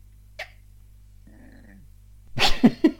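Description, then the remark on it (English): A low, rumbling growl, fairly quiet and lasting about half a second, followed by a cluster of loud, sharp, throaty bursts. “That was like a proper Marge Simpson growl, that was.”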